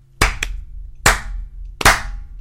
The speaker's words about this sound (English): That was the best clap I think we've ever had.